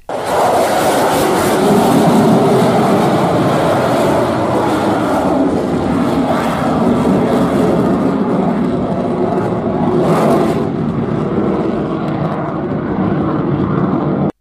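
An F-22 Raptor fighter jet roars loudly and steadily for the whole stretch, a dense engine rumble with a broad hiss that swells briefly near the end, with no voices.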